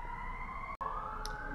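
An emergency vehicle siren passing downtown wails steadily and fairly loud, its pitch slowly rising, with a momentary dropout midway. No one speaks over it.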